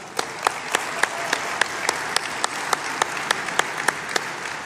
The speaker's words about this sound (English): So will y'all give a round of applause for that?